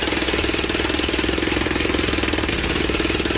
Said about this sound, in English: Is it a jackhammer? Yes, it is!